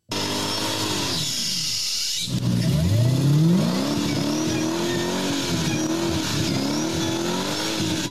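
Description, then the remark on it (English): A car engine revs hard while doing skids on a stadium pitch, its pitch swooping up and down, while tires screech in a high, sustained squeal early on. It stays loud and continuous throughout, with no talking. “You just smash through a fucking roller door and you can drive straight onto the pitch and do some skids.”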